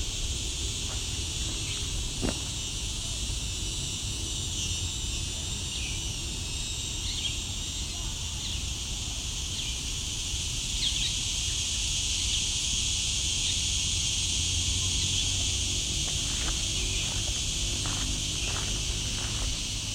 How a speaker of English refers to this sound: Okay, we're back at Caleb's Walk. After a bit of a break, there's cicadas everywhere. Still cicadas, but there's birds too now.